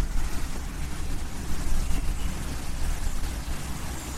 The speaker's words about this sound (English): So we're coming by a little waterfall here, is what you're hearing now.